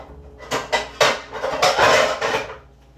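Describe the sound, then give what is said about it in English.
A small metal pan is picked up and set down, giving a few sharp clanks and knocks followed by a scraping rattle of cookware, with no one speaking. “Come over here, start getting a little small pan.”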